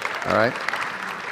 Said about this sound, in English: How many wives think romantic and emotional connection from a husband is important? Can you clap or do something like that, okay?